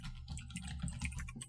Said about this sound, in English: You have a computer. Yeah, but I don't like the mechanical keyboard to interrupt the people's listening experience.